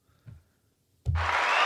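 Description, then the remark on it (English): After a brief soft thump and a short pause, loud applause bursts in suddenly, a dense, crackling wash of many hands clapping that holds steady until the end, with no voices. “This actually, that applause reminds me.”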